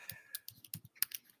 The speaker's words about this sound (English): Keyboard is so loud. Sorry. No. It's not your fault. It's my fault. It's really distracting me.